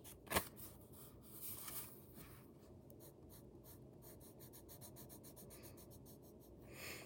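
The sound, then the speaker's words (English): Steady scratching of a colored pencil shading across paper, with rapid back-and-forth strokes and a sharp tap near the start; no one speaks. “Yeah, I just switched to colored pencil randomly.”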